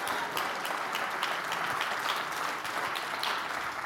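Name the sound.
audience clapping hands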